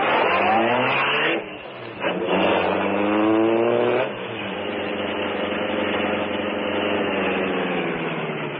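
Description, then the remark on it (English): The Green Hornet's sleek black car revs loudly with rising harmonic pitch, dips briefly, then roars again and holds a steady drone as it pulls away, continuous with no talking. “It was here, unknown to everyone, that the sleek black car”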